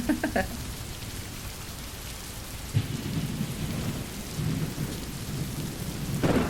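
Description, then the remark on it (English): Steady heavy rain hisses and patters throughout while low thunder rumbles and rolls beneath it, swelling in a few deeper surges, with no voices present. “So today I was out and about running some errands and oh my, the rain just started falling. Ooh, can you hear the thunder?”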